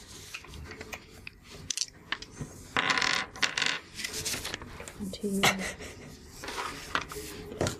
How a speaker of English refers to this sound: Oh, that sounds like a lot of dice there. That is hefty.